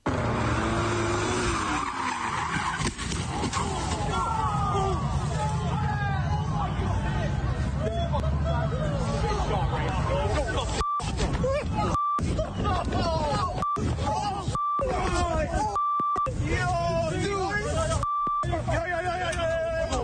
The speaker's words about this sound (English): And the video shows a yellow car being driven very fast when it appears to lose control and hit a tree. This is what the video sounded like.